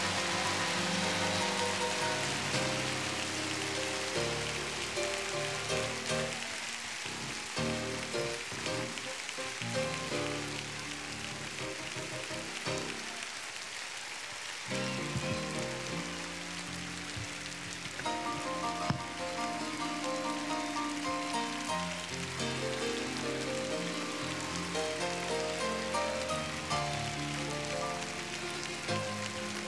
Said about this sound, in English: Stand on your feet, clap your hands, and let's build the bridge.